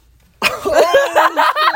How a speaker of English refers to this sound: I don't even know why I'm coughing. I think my throat's just hella parched.